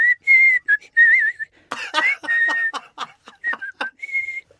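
person whistling a tune

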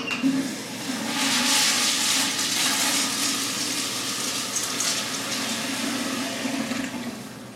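toilet flushing

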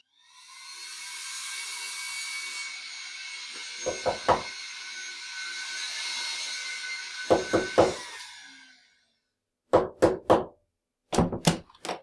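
knocking on a door

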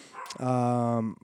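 dog barking

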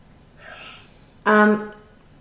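dog snoring

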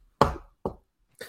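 knocking on wood

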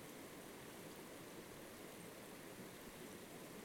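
river stream flowing water

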